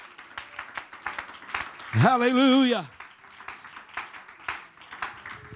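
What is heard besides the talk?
audience clapping hands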